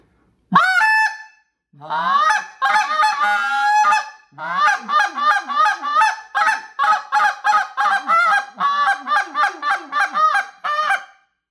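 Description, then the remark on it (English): A goose call blown hard, starting with a single loud honk, then a long run of rapid, rhythmic honks and clucks with sharp breaks, no talking. “2 HUGE GOOSE CALL TIPS! How to: Find your Best Call and Field Dress your Call”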